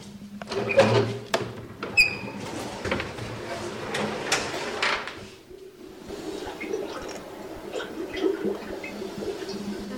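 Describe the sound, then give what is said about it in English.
Liquid bubbles and gurgles irregularly in a steady stream in alchemical distillation apparatus in the old alchemical laboratories beneath Prague's Old Town, with occasional clinks and knocks over a low hum; faint background voices murmur throughout. “So what you can hear, the bubbling sound, this is because this is where alchemists, they distilled elixirs, including the famous elixir of eternal youth, which is characteristic of this place, and it was based on herbs, alcohol, and opium”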